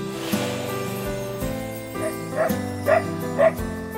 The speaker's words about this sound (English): What does it mean, a bird barking instead of laughing like the kookaburra does? Because the kookaburra is a laughing bird. So this particular kookaburra couldn't laugh, but could bark.